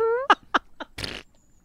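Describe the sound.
A voice imitates a fart: a rising buzzy tone, a few quick sputtering pops, then a longer breathy raspberry trailing off. Fairly loud, with no speech.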